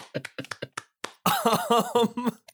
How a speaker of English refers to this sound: Give ourselves a round of applause. Woohoo!